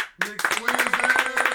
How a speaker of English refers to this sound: You ready with the applause for yourself?